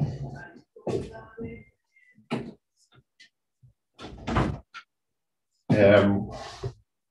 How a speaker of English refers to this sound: Just excuse me a second. I want to close my door here.